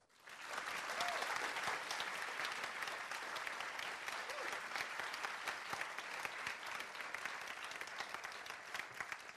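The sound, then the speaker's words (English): A large audience at a broadcast recording claps steadily and loudly for several seconds, a dense wash of applause that swells in quickly and holds, with occasional whoops and cheers rising above it. “So I know that you've already done a little round of applause.”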